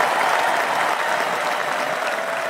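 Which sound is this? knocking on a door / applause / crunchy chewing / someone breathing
applause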